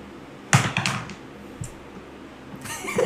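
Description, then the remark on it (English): Dice clatter and tumble across a table in a quick burst of clicks, followed by a lone tap and then another short rattling roll, moderately loud. “I gotta, like, start rolling it away from stuff. Roll it in the dice tray!”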